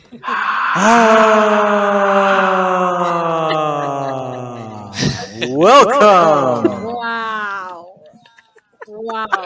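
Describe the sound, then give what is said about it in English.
As a guest is introduced, a single word is called out in a long, drawn-out voice with an echo effect, its pitch sliding and wavering as it trails off, followed by a few shorter echoing vocal bursts. “What the echo for dramatic effect has me weak.”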